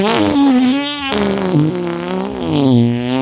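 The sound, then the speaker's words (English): A loud, drawn-out fart noise blown right into the microphone, buzzing and wavering in pitch for about three seconds; it sounds like a voice imitating the sound, with no talking. “Don't fart in the mic.”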